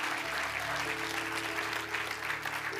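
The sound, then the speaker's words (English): A church audience bursts into sustained applause for people who raised their hands to say yes to Jesus, a dense steady wash of many hands clapping at once, loud and continuous for the whole stretch, with a low organ-like hum holding underneath. “Because every person who clapped did exactly what you did.”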